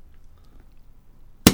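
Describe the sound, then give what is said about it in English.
A champagne cork pops with one sharp, loud burst after more than a second of near-silence, leaving a brief fizzing tail, as the bottle is turned rather than the cork. “Now, you know the secret of opening a bottle of champagne? Yes. Turn the bottle, not the cork.”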